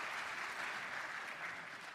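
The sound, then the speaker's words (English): A crowd claps steadily in a round of applause given to the Lord, a dense, even wash of many hands with no pauses, sustained at a moderate level throughout and no voices standing out. “Give the Lord a hand. Round of applause.”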